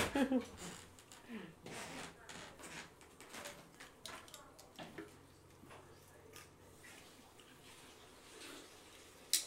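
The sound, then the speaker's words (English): Water runs steadily from a sink tap while someone drinks straight from the stream, with uneven slurps and splashes breaking through the constant hiss. “I'm going to drink from the sink and then we're going to talk about Andrew Tate.”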